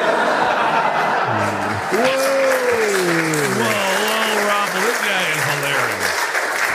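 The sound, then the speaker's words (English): Steady, dense applause from an audience fills the whole clip at an even loudness, with a man's voice speaking over it and a few chuckles mixed into the clapping. “Post hoc ergo propter hoc, right? Applause.”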